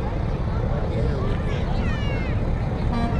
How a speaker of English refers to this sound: Still have some parade units making their way. We've got a jet, we got a fire truck making its way down. Can't quite see where this unit's from yet.